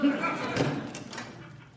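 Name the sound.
door being opened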